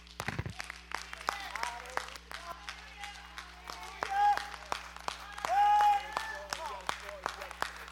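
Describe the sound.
An audience claps their hands to God after a prayer, in a sustained, uneven burst of applause, with a couple of brief raised voices or whoops cutting through the clapping.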